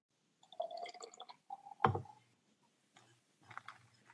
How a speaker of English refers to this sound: I poured mine over ice and some blueberries.